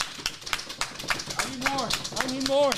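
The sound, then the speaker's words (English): A short burst of applause from a small group, scattered sharp claps, with voices whooping and cheering over the clapping toward the end. “Round of applause.”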